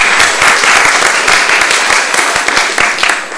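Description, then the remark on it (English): A crowd of townspeople applauds themselves for the passion they showed for their community, steadily for several seconds, a loud, dense patter of many hands clapping at once with a faint murmur of voices underneath. “So give yourselves a round of applause, because you guys were amazing.”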